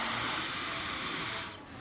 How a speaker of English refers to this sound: It's going to blow me away. Wow. I would imagine this blow dries your hair in a quarter of the time a normal hair dryer takes.